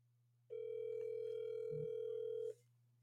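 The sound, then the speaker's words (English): A steady electronic telephone ringback tone from an outgoing phone call being placed sounds for about two seconds over a low constant hum, with a brief low blip near the end before it cuts off. “Let's get a little call in on them and see how they're making out.”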